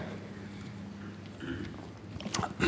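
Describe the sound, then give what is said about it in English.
Someone takes a drink of water: soft sipping and swallowing with small wet mouth noises, a few sharper clicks toward the end, and no talking. “Excuse me, I'm just going to have a drink.”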